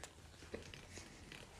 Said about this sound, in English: Take your bite. Let's see what you think. Taking a bite. chewing.